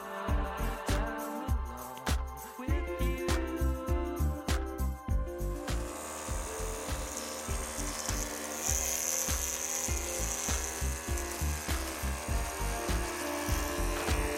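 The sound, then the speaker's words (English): Electric hair clippers buzz steadily during a haircut, their motor whine pulsing and shifting in pitch as they work through hair, with no voices. “Now, how about that haircut?”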